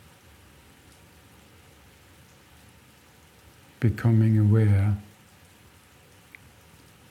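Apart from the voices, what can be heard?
rain falling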